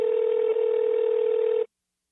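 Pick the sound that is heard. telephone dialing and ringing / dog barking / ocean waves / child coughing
telephone dialing and ringing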